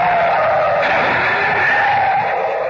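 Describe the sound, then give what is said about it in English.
A loud, sustained screech of car tires skidding as a car pulls away from an oncoming car headed straight for it, a harsh high-pitched squeal that holds steady for a few seconds with no voices. “It's lucky I was able to pull away in time.”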